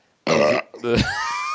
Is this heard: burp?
yes